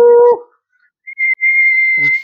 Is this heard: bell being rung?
no